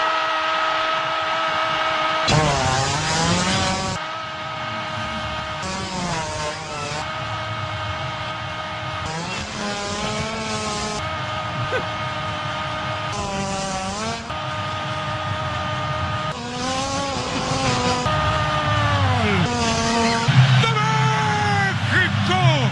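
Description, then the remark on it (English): A Telemundo sportscaster's long, wavering shouted World Cup goal call, pitch sliding up and down, is mixed with low, blubbery hippo farts that rumble and sputter beneath it, loud and continuous throughout. “Telemundo World Cup goal call mixed with hippo farts.”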